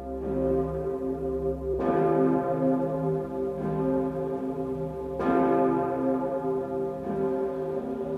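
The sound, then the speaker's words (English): The great bell of St. Stephen's, cast from cannons, tolls with deep, booming strikes, each one swelling into a long, shimmering hum of overtones that barely fades before the next blow lands. No voices, just the bell. “Great bell of St. Stephen's, cast from cannons.”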